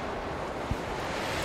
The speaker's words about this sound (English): a huge piece of stone is sent flying through the air, crashing into where Ernest was, and continuing along, pulled by the howling winds.